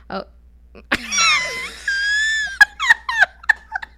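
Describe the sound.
A drawn-out, voiced yawn that starts with a sharp intake, stretches into a wavering, moan-like tone, then trails off into a few short mouth clicks and small vocal sounds.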